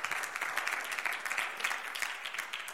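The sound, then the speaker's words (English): A crowd gives a 'clap offering', applauding steadily, many hands clapping in a dense, continuous patter that holds at an even level throughout, with no voices standing out. “Come on, somebody, give them a good clap offering, amen.”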